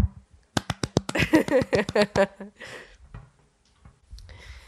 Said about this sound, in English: I'm a homeowner. Congratulate me right now. Yeah, let me put the mic down and give you a golf clap.